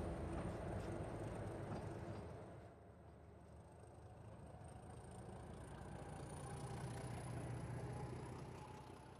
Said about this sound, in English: Here it comes. This train's probably going to beat us up to the station. The British used to come on this train to come up to this area because it's so cool, even in the summertime.